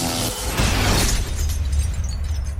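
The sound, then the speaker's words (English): A loud, sizzling plasma bolt blast cast by a sorcerer bursts out in a broad crackling rush, then decays into a rumbling low roar that lingers for a couple of seconds, with no voices present. “Weapon of choice, plasma bolt.”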